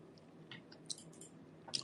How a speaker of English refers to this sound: Excuse my chewing in the background. I love mango. Such a great snack.